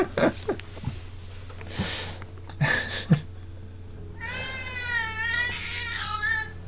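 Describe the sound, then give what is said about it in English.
A few thumps and rustling bumps, then a cat lets out a long, wavering, drawn-out meow, rising and falling in pitch before fading. No one speaks. “Your cat is probably fighting like a scorpion.”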